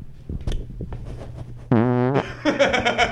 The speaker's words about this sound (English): I just farted into the microphone, dude. It was loud as hell, too. It was loud as hell.